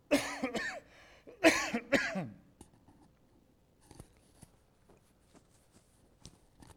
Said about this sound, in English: Excuse me, I'm going to cough.